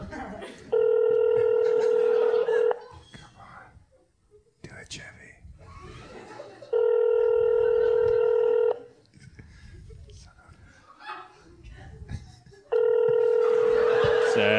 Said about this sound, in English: Oh, my phone's ringing.